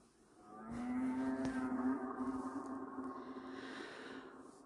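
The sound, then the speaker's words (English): A whale vocalization: one long, steady moaning call with a buzzy, harmonic-rich tone, swelling in and holding for about four seconds before easing off, with no talking. “I'm going to take you on a relaxing journey with the cetaceans, our whale and dolphin friends.”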